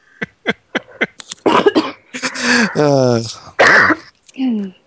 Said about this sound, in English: Oh, dear. Sorry, I'm coughing a lot.